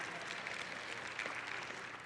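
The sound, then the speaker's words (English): An audience applauding: a dense, steady wash of many overlapping hand claps at moderate volume, crackly and bright, holding evenly for about two seconds with no voices on top. “I was not expecting applause over that.”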